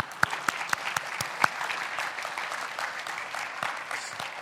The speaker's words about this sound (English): So thank you very much. Yeah, let's go ahead and clap for the moms.